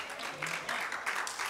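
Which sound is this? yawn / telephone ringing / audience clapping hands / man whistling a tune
audience clapping hands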